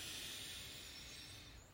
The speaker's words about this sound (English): Let's take a deep breath in, breathing in the possibilities. Breathe in.